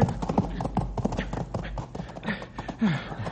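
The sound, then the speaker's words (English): A horse's hooves scramble and clatter in quick, uneven bursts near the edge of a canyon, fairly loud, with a couple of strained horse snorts or grunts mixed into the frantic scuffling. “I was sure he was going to pitch us both over the side, stupid horse.”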